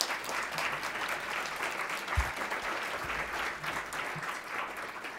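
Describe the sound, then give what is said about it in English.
An audience at a City Club youth forum claps steadily for the panelists, a dense, sustained wash of applause at fairly even loudness for several seconds, with no voices standing out. “All right, round of applause for our panelists today.”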